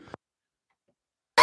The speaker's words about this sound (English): Sorry, Jesus Christ, you finished up just as I coughed in the fucking microphone.